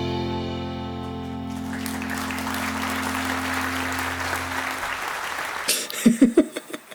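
A round of applause for a performer taking a bow over Skype swells in as a sustained music chord fades out beneath it, the steady clapping lasting several seconds before a voice begins speaking at the end.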